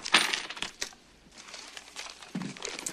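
Coins from a coin collection, including nickels, quarters and a penny, clink and jingle as they are handled, with bright metallic taps and a brief rustle, scattered irregularly over a few seconds with no one speaking.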